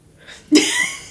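A big yawn: a soft breathy intake, then a sudden loud, open-throated voiced sigh that holds steady to the end, with no talking around it.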